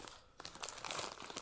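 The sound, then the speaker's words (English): A plastic bag of Sour Patch Kids sour candy crinkles in a busy, irregular burst of rustles and crackles as someone eats from it, briefly pausing before crinkling harder again. No one speaks. “Are you eating a horse over there? Sour Patch Kids.”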